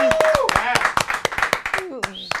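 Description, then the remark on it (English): A quick burst of sharp hand claps, roughly a dozen in an uneven rhythm, as the host of a radio show claps for themselves, with excited voices whooping and cheering over them. “Those listening on the radio can't see me, but I'm like clapping for myself.”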